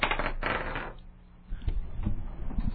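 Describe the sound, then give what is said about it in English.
Dice are rolled for a double-or-nothing bet needing a prime total, rattling and clattering in a dense rolling burst, then a brief lull before scattered lighter clicks and taps as they settle on a total of 8. “facing off against the dice of destiny”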